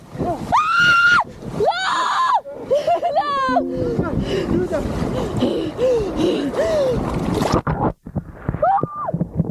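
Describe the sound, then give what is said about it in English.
A woman lets out loud, shrill screams in repeated bursts while plunging into icy water on her first polar plunge, done for the Special Olympics and recorded by a friend, with splashing and rushing water noise around her; the sound turns muffled briefly as the microphone gets wet, before another scream. “She dips into the cold water, the microphone gets wet and changes the sound.”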